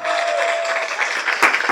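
A short burst of canned studio-audience applause: dense, steady crowd clapping throughout, with a faint sustained tone fading out during the first half and a sharper clap accent near the end.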